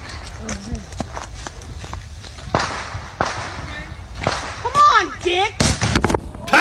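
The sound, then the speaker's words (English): Fireworks burst inside a microwave sitting in the middle of a street, giving several sharp, loud cracks at irregular intervals, while excited voices shout and exclaim between and over the blasts. “There's a microwave in the middle of the street, and she's put fireworks in it, and she is now running away.”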